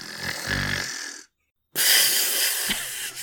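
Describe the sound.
A voice imitates loud snoring in a dark dorm room at night: a rough, rattling inhale, a brief silent pause, then a long breathy, hissing exhale. No talking.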